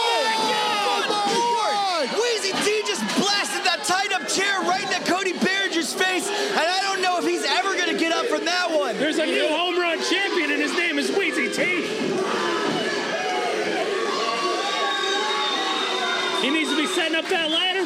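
A packed wrestling arena crowd cheers wildly and continuously, a dense roar of many overlapping shouting and whooping voices that stays loud for the whole stretch, with no single speaker standing out.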